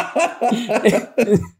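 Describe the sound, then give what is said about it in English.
A quick run of about five harsh, raspy coughs in rapid succession, loud, each burst voiced and rough before trailing off into silence. “Fuck, now I'm really worried Dr. Dre's going to call up and I'm going to be coughing.”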